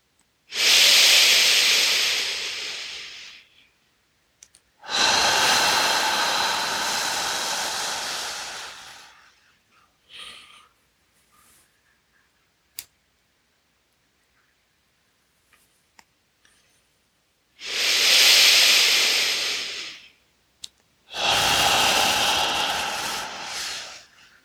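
Slow, deep breaths in a breathing exercise: two full cycles of long, airy inhales and exhales, each lasting several seconds, separated by a long quiet pause with faint clicks.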